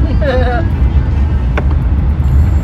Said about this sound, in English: look, we're in the car again. Yay.